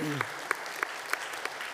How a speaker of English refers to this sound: Well, at this point, we're gonna move into communion. We can clap about that.